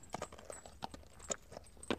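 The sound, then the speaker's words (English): The hooves of an American Saddlebred horse clip-clop in a quick, slightly uneven rhythm, about half a dozen sharp knocks over two seconds, fairly soft and with no voices. “See, I got this American Saddlebred, and I don't know what I'm doing wrong, but I've been putting down food and water and everything, and the horse just isn't touching it.”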